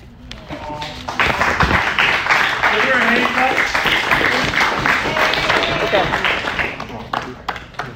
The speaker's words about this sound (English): Give her another hand clap because, you know.